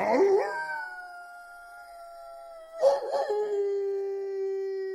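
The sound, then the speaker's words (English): A dog outside howls at the full moon: two long, wavering howls, the second rising in after a brief dip and trailing off steadily; fairly loud, with no other sounds around. “howled at the full moon outside.”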